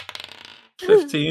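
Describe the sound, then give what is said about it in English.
A quick burst of light clattering, like dice tumbling and rattling across a tabletop for about half a second as a perception check is rolled, followed by a voice speaking. “roll a perception.”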